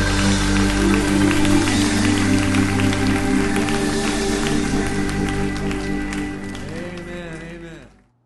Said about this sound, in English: Let's applaud it one more time.